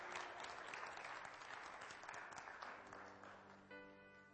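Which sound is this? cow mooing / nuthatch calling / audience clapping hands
audience clapping hands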